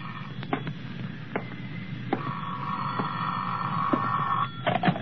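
A telephone rings with a steady, buzzing electric tone that holds for a couple of seconds, broken by sharp clicks over a hissy, muffled background.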